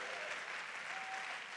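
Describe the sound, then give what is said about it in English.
An audience claps together during a sermon on prayer, in steady, dense applause, a broad crackling wash of many hands that holds at an even loudness throughout, with no voices standing out. “Come on, clap like prayer is working for you.”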